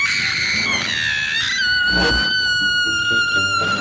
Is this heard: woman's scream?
yes